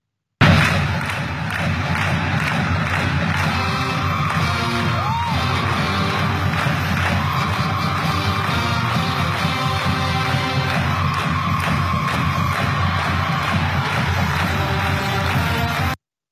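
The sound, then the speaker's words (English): A large crowd at a 2020 Port Neches Groves High School football game in Texas cheers and shouts continuously and loudly, with scattered whoops, thuds and a brief whistle-like tone rising above the steady roar. “So indigenous leaders are urging Texas schools to forfeit games in protest against the Port Neches Groves High School mascot and cheer for past insensitive displays like this one from 2020.”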